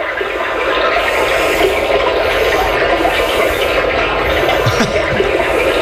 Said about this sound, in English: Now, this is my personal favorite, and warning, if you're driving your car, you might want to pull over, because this could put you to sleep. This is a brook, a little bit of water.